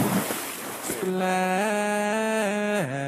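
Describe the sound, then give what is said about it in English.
A short, loud watery splash bursts out, then gives way to a steady droning tone that shifts up and down in pitch for a couple of seconds. “Splash.”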